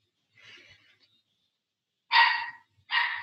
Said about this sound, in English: Dog is barking so much.